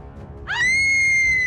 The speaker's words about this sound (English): The girl screamed in fear.